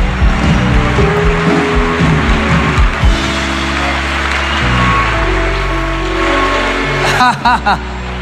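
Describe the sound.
A church audience claps loudly and steadily in praise of God, a dense, continuous patter of many hands over sustained low musical tones, with a voice rising briefly near the end.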